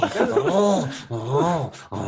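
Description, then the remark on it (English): A coyote named Jasper, being milked, makes two drawn-out, wavering whimpering cries with a rough growling edge, each rising and falling in pitch, separated by brief pauses and short breathy bursts. “Look, I'm milking the coyote now.”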